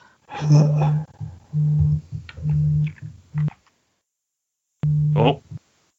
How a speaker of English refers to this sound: Phone is beeping. Can you hear that? That yeah. is my phone. It's just the, my phone is ringing and it's on silent.